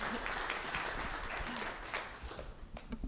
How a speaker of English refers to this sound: You know what? It's not easy to get up here, so just give her a round of applause.